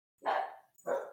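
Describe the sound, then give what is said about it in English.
Two sharp, yappy barks from small dogs, fairly loud, the second following quickly after the first with a brief gap between them. “Dogs are out.”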